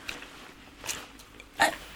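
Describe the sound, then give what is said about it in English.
A large dog gives a couple of short, rough huffs or muffled barks, the second louder, against a quiet background with no talking. “What was that? It's just a dog. Just a dog? Yeah, just a dog. Big bugger.”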